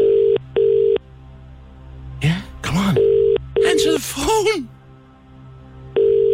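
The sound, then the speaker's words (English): After a phone number is dialled, a telephone ringback tone sounds in repeated double pulses, a pair of steady buzzing tones about every three seconds, heard clearly over the line while voices talk between the rings. “Hope we get the right response at the end of the phone. Come on, I want to live free. 20 minutes.”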